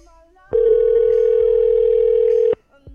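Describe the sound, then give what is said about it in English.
A telephone dial tone sounds as one steady, unbroken hum for about two seconds, loud, switching on and off abruptly with brief quiet moments around it. “If this doesn't work, I'll call her cell phone too.”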